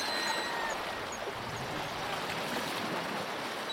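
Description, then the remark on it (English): Waves wash and crash against rocks below sea cliffs in a steady, broad roar of churning water, with faint high calls of nesting seabirds, gulls or guillemots, drifting over the surf. No one speaks. “I can hear the thundering sounds of nesting seabirds on a rock below, gulls or guillemots, and waves crashing against the rocks.”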